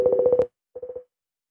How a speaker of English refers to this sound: I'm just looking in my phone here. I'm going to make a quick phone call here.